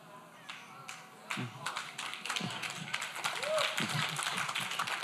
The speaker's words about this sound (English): That's slow clap number 5.